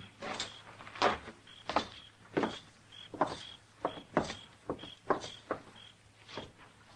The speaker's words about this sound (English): Come on, we'll walk right in the front door.